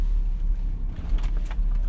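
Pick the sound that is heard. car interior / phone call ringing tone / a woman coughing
car interior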